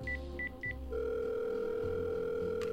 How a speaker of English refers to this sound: I picked up the phone. I dialed.